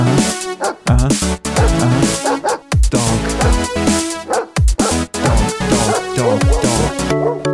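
A dog barks and yips loudly in a rapid, continuous series of sharp bursts, filling the whole stretch with no pauses for talk.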